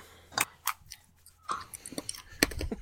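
Crisp crunching and smacking bursts come in an irregular rhythm, like someone chewing food, with short quiet gaps between bites.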